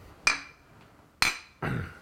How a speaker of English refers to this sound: and so I want to, without saying anyone's name out of respect, I want to raise a glass and give a toast to our friend.